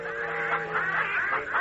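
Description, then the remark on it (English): Hens cluck and squawk in a busy, overlapping run of short nasal calls, steady in loudness, with no one speaking. “Every day, the hens and the roosters and the turkeys and the pigeons and the sparrows and everybody ganged up on me.”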